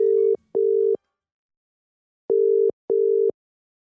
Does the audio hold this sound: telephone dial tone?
yes